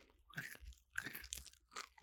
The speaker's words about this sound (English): I'm going to have one little melatonin chocolate